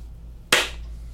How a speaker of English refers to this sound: So we want to just clap it again.